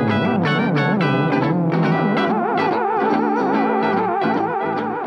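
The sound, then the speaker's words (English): A theremin played by Paul Giamatti sounds continuously, its wavering, swooping pitch sliding up and down with heavy vibrato, fairly loud, with an echoey, effects-laden texture and no talking. “Every theremin player in the world is so insulted by what I do.”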